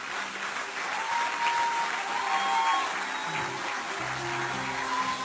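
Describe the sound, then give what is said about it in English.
A crowd applauds steadily for several seconds, a dense wash of many hands clapping at once, fairly loud and sustained, with faint low tones humming underneath; an audience clapping in gratitude to God. “I mean, I don't know if you want to clap, clap.”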